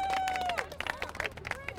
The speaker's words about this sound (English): Oh, well done. Well done. Folks, can we give him a round of applause for being very brave?